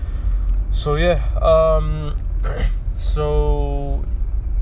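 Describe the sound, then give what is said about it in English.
A steady low rumble of engine and road noise fills a car interior as it drives home through a bit of traffic, running continuously underneath a person talking in the foreground. “Like I said, I'm just making my way home. There's a bit of traffic right now, but I'm not like in a rush or anything.”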